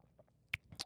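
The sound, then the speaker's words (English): Two quick, soft, wet mouth sounds, small cautious slurping sips of scalding hot tea, with no talking around them. “Now I have to take a sip of this scalding hot tea.”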